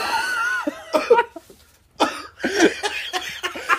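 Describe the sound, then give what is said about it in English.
Someone coughs deliberately in several harsh, raspy bursts, with a short pause partway through and a rapid flurry of coughs at the end. “If she would try to get in the car and start coughing and shit, like, if I would...”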